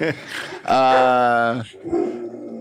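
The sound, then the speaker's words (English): A dog barks and growls in a drawn-out, tonal outburst lasting about a second, with shorter rough vocal sounds before and after it, and people's voices mixed in. “My dog's here.”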